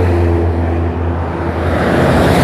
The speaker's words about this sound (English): There's no speed limit in Mexico. So I'm just waiting to cross again. I'm gonna cross. If one of these cars loses control and goes into the middle, excuse me, it's gonna hit me and kill me.